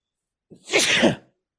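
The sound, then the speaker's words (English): A single loud sneeze with a brief sharp intake of breath followed by an explosive burst lasting under a second, then silence. “Bless you.”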